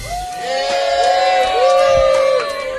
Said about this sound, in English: All right, and now cheer.